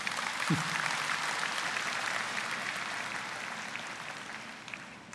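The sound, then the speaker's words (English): A crowd applauding steadily in praise of God, a dense wash of many hands clapping at once that holds fairly even and fills the room for several seconds before easing slightly. “Yeah, you can clap.”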